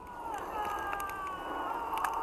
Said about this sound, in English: those little people yelling, all that stuff, these are the credits of a game I just played called Pendragon, and there are multitudes of choose-your-own-adventure moments in this game.